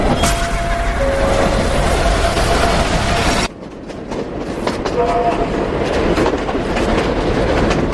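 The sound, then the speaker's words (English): A New York subway train in a film sequence rumbles and clatters loudly along the rails, a steady roar with a brief drop partway through before the rattling picks back up. Faint indistinct voices sit under the noise. “The second one that I actually really think was tied to New York pretty well was the subway sequence.”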